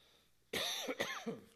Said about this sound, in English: let me cough real quick.